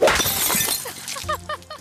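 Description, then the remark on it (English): Glass shatters with a loud, bright crash, followed by scattered shards tinkling and clinking as they settle over the next second or so. Clear, with no voices. “How'd she not get glass in her foot?”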